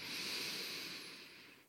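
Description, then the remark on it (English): A soft, airy breath drawn in during a guided breathing exercise, steady and unhurried, then trailing off into quiet. No one speaks. “One more breath.”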